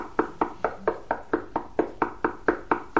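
A steady series of firm knocks on a hard surface, about a dozen evenly spaced raps in quick succession, fairly loud, with no voices.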